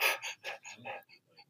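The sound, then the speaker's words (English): A person imitates the rapid, stressed panting of a Hadza Bushman in the East African bush: about five quick, breathy huffs in a fast rhythm, fairly loud, fading into softer short breaths at the end. “So imagine I've got one of my Bushman friends, and we're in the bush, and he's breathing like this.”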